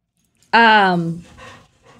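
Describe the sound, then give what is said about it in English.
A dog named Copper pants in a few quick, breathy bursts, just after a loud, falling, whine-like vocal tone. “Yes, your Riley Copper was, panting in the background.”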